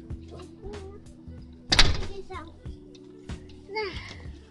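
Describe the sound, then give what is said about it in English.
A door swings shut with one loud thud midway through, surrounded by a child's voice and other chatter. “You gonna close that door or you gonna air condition the entire neighborhood?”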